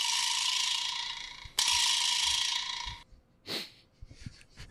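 A vibraslap rattles in two long, loud, buzzy bursts back to back, a dense bright clatter that fades out, followed by a brief whoosh and a few faint rattles. No one speaks.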